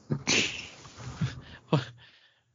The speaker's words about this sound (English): Cats cry.